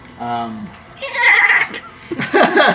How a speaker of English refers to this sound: it's a goat sound.